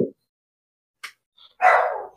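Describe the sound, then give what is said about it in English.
A dog gives a short yip, then one loud, full bark, with brief quiet gaps between the sounds and no talking. “Joe's dog is going to be doing this”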